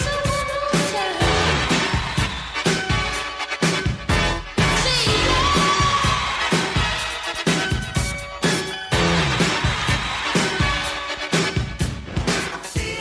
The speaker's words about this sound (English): If you listen carefully, buried under the sound of a roaring crowd, you can hear